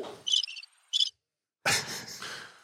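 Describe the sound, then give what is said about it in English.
A cricket chirping sound effect played from a button: two quick bursts of high, trilling cricket chirps, fairly clear, followed after a short silence by a louder wash of broad, rough noise. “Sorry, crickets, please. The button.”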